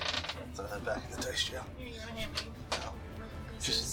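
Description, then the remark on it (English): Dice clatter into a dice jail container in several sharp, bright bursts, with a few scattered clicks in between, while voices murmur underneath. “Back in the dice jail.”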